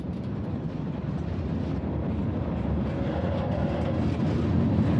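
A train rumbles steadily along the rails, a dense, continuous low roar that stays loud for the whole stretch, with no voices over it.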